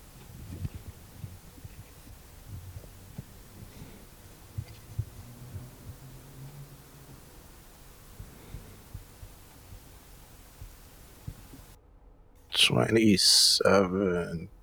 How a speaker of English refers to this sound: See, now I'm hearing like some kind of like static. Yeah, I can hear it.